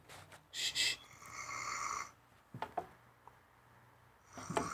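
A man snores up close: a sharp snort, then a long raspy, droning inhale, followed by a few short breathy snuffles and another snort at the end. No talking.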